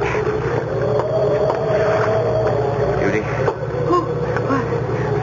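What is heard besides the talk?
boat on the water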